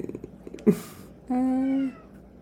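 A single drawn-out cat meow, steady and fairly loud. A short rustling thump comes just before it, against a quiet background.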